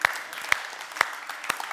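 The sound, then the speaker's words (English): A crowd cheers and applauds steadily, a dense wash of clapping with a few sharper, louder claps popping out roughly every half second; no one speaks. “That's worth a cheer. Worth more than that.”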